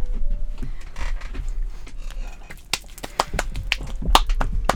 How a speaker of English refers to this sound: One. Two. Three. Oh. Ouch. That was a slap.